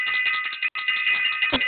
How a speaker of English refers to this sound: I'm going to ring the bell for self-invested. Yes. Wow. And I'm going to ring the bell for all of Planet Remix all over the world. There we go.